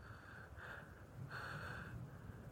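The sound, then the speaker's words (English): Slow, heavy breaths fogging a cold window, one short huff and then a longer drawn-out one, soft with a slightly raspy, nasal edge. No talking. “…'s heavy breathing started fogging the cold window as he stood motionless, staring out.”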